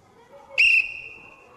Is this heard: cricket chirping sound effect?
no